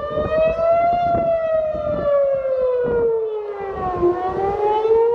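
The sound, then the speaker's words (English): A loud air-raid siren wails continuously outside a house during a missile alert, its long tone sliding slowly down and then starting to rise again, with faint background rumble and no voices. “And then 5-10 minutes later, we heard an actual siren go off outside the house, and we kicked into gear as we have in previous rounds of conflict.”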